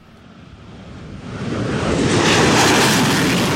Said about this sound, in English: F-5 fighter jets take to the sky in a spectacular display. At Taidong's Zhiheng Air Base, an air display showcased the retiring F-5 fighter.